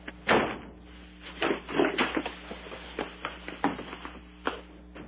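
A door opens with a series of clunks and rattles as a woman walks in, followed by scattered knocks and shuffling over a steady low hum, with no one speaking.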